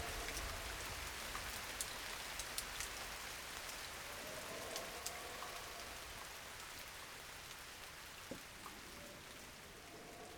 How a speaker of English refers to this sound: listen for just a moment more to the peaceful rain from Summer Woods